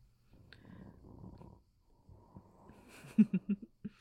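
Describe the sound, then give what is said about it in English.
A father snores at home: low, rasping snoring, one long rumbling breath, a short pause, then another drawn-out snore ending in a quick run of louder, sputtering snorts. No one speaks. “Papa is still snoring. Can you hear it?”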